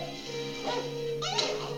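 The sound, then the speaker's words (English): A dog that has been chained up its entire life gives two short whining yelps, rising in pitch, about half a second apart, over a steady humming tonal background. No one speaks. “The dog's been chained up its entire life, and she gave the other one meat.”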